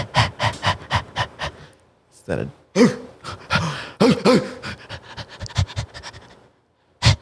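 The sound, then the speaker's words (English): In a studio, a person imitates a panting dog with quick, rhythmic breathy huffs, pausing briefly midway for a few throaty bursts before resuming the fast panting. “I bet if you're listening to this right now, like if you're not watching it, you probably thought there were animals in the studio.”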